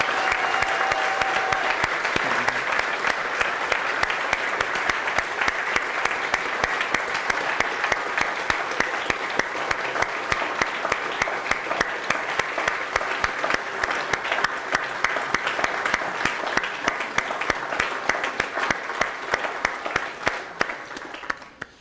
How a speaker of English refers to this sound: Well, if you were blessed and encouraged tonight by the concert and the message, can we just give one big round of applause for the entire Pettit team?